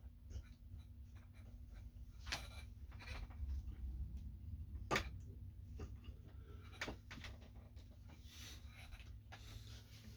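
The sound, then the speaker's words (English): Plastic clunks and scrapes as a chair armrest that came off is shoved back into place, with one sharp snap near the middle, over a steady low hum. “Like son of a bitch, just fucking rip the arm off this chair.”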